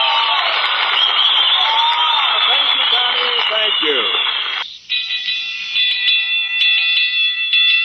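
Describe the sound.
A loud firehouse alarm bell at the Costello Firehouse rings nonstop and piercing, with muffled voices underneath at first. Midway it breaks off briefly, then resumes with a steadier, harsher ring.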